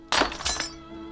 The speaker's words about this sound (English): Did something get smashed in here? Glory be. Her vase fell off the mantelpiece.